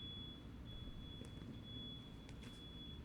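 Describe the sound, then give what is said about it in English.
A fire alarm sounds from outside as a steady, thin, high-pitched tone that holds for the whole stretch, over a low rumbling background with no talking. “The fire alarm was off.”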